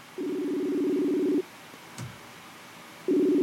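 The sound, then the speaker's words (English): A call ringtone plays through a computer as a guest is called to join a live stream: a steady buzzing ring of just over a second, a pause with a faint click, then the ring starts again, clear. “Phone's ringing.”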